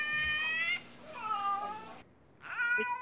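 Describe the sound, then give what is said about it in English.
A purebred male cat meows three times in quick succession, drawn-out and whiny calls with short pauses between them, fairly loud with no voices alongside. “this cat particularly, I fear he has some sort of, even before this incident, like a cat-like, like autism almost, because he's a purebred and he's just not all there.”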